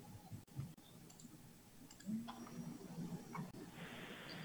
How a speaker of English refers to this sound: Sorry, I'm just double clicking the link in.